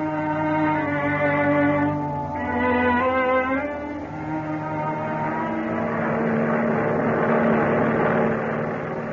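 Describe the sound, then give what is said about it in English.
A transport airplane flies at high speed, about 150 miles an hour: its steady, droning engine roars continuously, layered humming tones wavering and shifting pitch briefly before settling into a loud, sustained rumble, with no voices. “A transport airplane moving through the sky at high speed.”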